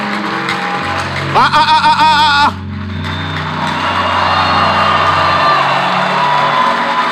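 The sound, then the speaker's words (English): An audience bursts into loud, sustained cheering and a hand clap of praise to God, with a high whooping shout rising above the crowd early on before the dense roar of clapping and voices carries on. “Give him a mighty hand clap of praise.”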